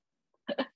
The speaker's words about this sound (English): He says as he coughs for a second. Pardon me, boy.